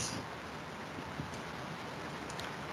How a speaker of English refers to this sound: Is it raining where you are? Yes, it is. Yes, it is.